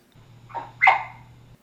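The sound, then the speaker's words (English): Ginger, a herding dog, gives two short barks, the second louder and sharper than the first, over a faint steady low hum. “Hey, Ginger, you're an extraordinary herding dog.”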